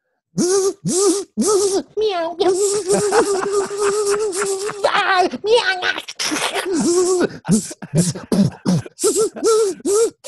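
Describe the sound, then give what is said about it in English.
A voice imitates lightning striking a panther with a rapid string of loud crackling bursts, hisses, sputters and wavering yowls and growls that rise and fall in pitch, broken by short pauses. “So what I need you to do is, what does it sound like when a bolt of lightning takes out a panther?”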